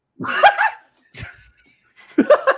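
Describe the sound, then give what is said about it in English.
A puppy yelps in three sharp, high-pitched cries, the first and last loudest, with brief silent gaps between them. “I ran over the puppy's paw.”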